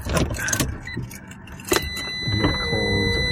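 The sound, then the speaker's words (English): A car's power window hums upward with a steady electric motor whine, preceded by a few clicks and light jingling over the low rumble of a car interior. “I think I may have to roll my window up.”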